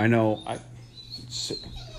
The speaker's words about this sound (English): I know there's fucking people outside, Tyke. You can't fucking bark at them.